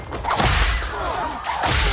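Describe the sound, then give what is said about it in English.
A whip cracks loudly twice, each sharp snap arriving with a broad swishing rush of air, the second coming after a short pause. No voices are heard. “Whip her hand!”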